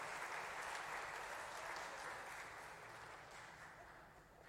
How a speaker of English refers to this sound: Could we give our volunteers a round of applause?